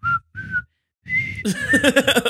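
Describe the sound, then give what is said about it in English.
A person whistles a TV theme tune up close: three short clear notes separated by pauses, then a longer warbling run of quick, bouncy notes, loud and alone. “I was just about to whistle the Harlem Globetrotters theme, but I did it.”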